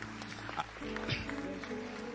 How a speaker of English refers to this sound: You can clap. That's fine. This is an excellent time to do that.